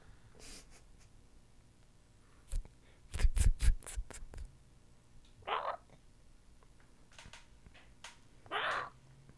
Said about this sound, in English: Grackles, man.